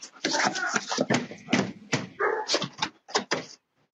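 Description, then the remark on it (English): A dog that has just been hurt by a person yelps, whimpers and barks in rapid, uneven bursts over about four seconds, fairly loud, with agitated human voices mixed in before a brief silence. “You just hurt that dog, bro.”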